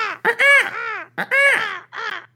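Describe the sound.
A person imitates a crow, letting out several loud, harsh caws in quick succession, each a raspy, nasal squawk, with short gaps between them.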